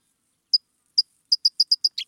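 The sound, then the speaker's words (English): A California towhee calls with sharp, high metallic chips, at first spaced apart, then quickening into a rapid run of about nine notes that ends in slightly lower, buzzier chips. No one speaks. “One of those public birds? The California towhee.”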